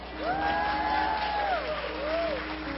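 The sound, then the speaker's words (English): An audience claps and cheers in a steady wash of noise, with a long rising-and-falling whoop riding over it and a shorter shout near the end. “And there are churches that, man, when you mention offering, they start clapping and shouting and celebrating.”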